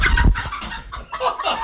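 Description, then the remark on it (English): Chickens clucking, a rooster with his hens and a curious young pullet coming to the door, in a quick irregular series of soft, throaty clucks and murmurs with a brief louder low thump at the start. “Just for example, the one little pullet's coming to the door, she's very curious.”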